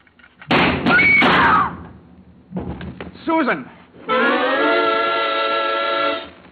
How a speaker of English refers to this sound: When Susan snapped the spring lock to open the door, the gun outside opened up.